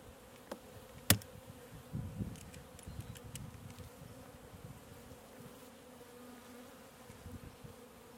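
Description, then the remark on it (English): A dense, steady drone of many honeybees buzzing in a beekeeper's weakest hive as it is opened for inspection, a low continuous hum with a few sharp clicks and knocks early on, and no voices. “This is our weakest hive. This hive swarmed in the middle of summer and it never bounced back.”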